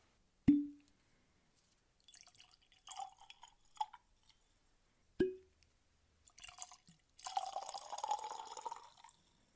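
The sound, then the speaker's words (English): Bourbon whiskey poured into glasses: two sharp glassy knocks, short trickling splashes, then a longer steady gurgling pour near the end, with no talking. “So let's get these poured and jump right in.”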